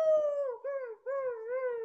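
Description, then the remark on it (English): A person imitates a dog's howl: a sustained, wavering, fairly loud tone that dips and breaks briefly midway, then resumes and slowly trails off, with no talking. “I am going to howl, and I'm just going to paw at the door.”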